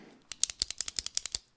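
A rapid run of about twelve sharp, crisp pen clicks, evenly spaced, lasting just over a second with no talking.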